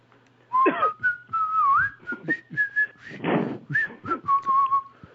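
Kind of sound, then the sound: signal or alarm, whistle blown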